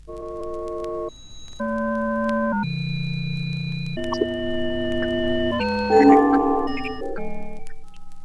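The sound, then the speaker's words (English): Pure electronic sine tones sound in sustained, stacked chords that shift abruptly to new pitch combinations every second or so, steady and fairly loud, with no voices. “First, an example of the use of the sign tone in this composition.”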